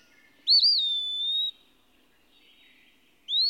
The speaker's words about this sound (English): Everywhere in these solitudes, I am greeted with the pensive, almost pathetic note of the wood pewee. The pewees are the true flycatchers, and easily identified.